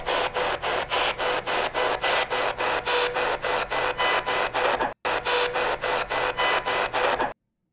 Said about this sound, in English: And you're going to have to listen for it in two high-pitched tones that are differentiating from the normal ch-ch-ch-ch-ch.